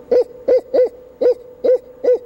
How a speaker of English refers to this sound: The barred owl says, "Who cooks for you?" Or in the South, it says, "Who cooks for y'all?" It goes.